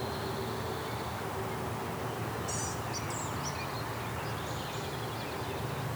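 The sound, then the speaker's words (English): Faint, thin songbird phrases from a house wren and a gnatcatcher, high and squeaky, over a steady outdoor hiss, with a brief cluster of chirps midway. “So gnatcatcher on the right. House wren on the left.”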